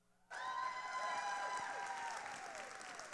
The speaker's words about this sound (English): So would you please help me welcome with a great applause of appreciation,